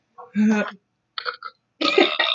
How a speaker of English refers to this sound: oh gosh, excuse me, I had to burp.